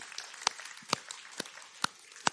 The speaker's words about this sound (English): And these are significant steps of faith and obedience. And let's just applaud them right now for that, shall we?